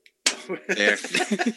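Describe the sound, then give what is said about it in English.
A single sharp pop as the cap comes off a bottle of Uinta Brewing Yard Sale winter lager, immediately followed by people talking and chuckling over it. “And let me have a moment while I pop my top.”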